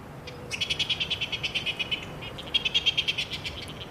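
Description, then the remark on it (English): A coast petrel calling in two rapid bursts of rhythmic, high-pitched chattering pulses, each run lasting over a second with a brief pause between, clear and without any voices. “During spring and summer, if you live in Auckland or Northland, you might hear their call overhead at night.”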